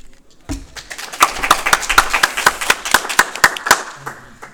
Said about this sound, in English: Did you just clap for us? Sure. Yeah. I wanted the sound effect there. I can always drop in the sound effect. Look at that roaring audience.